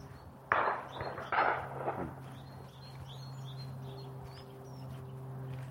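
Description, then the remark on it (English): Two shotgun blasts from a shooting party around a copse crack out in quick succession, each rolling away in a short echoing tail, while small birds, including tits and a nuthatch, keep chirping and calling over a steady low outdoor hum on a ridge atop the Downs. “That's the crack of shotguns as the shooting party.”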